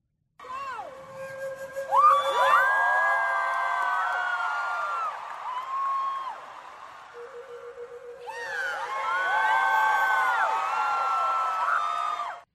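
A single sustained note is played on Madison's historic flute, lent by the National Archives, on stage at a live event; a large crowd erupts in loud cheers and high screams; a second held flute note follows and sets off another roaring burst of cheering.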